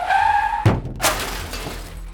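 A Jaguar car's tires squeal in a high, steady screech for under a second as it brakes hard on a road, then a loud crash hits as it strikes a figure, followed by a bright burst of shattering glass and debris settling. No voices.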